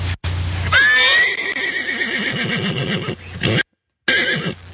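A horse lets out a loud whinny that rises and trembles, followed by snorting and breathy nickering, with a brief gap before more low rumbling horse sounds.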